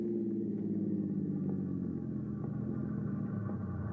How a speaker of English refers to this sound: You park the car on the tracks, stall it with the keys left in the ignition,